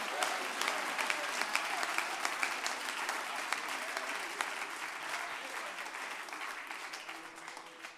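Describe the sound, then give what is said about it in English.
A large group claps steadily and loudly for several seconds at the speaker's call to clap their hands, a dense wash of overlapping hand claps with scattered sharper individual claps, sustained throughout and easing slightly toward the end. “I want you to clap your hands and say, there's a breakthrough coming.”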